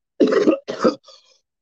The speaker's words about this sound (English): You get higher every time you cough. No, I'm still working out the last residuals of this sinus infection, so excuse me.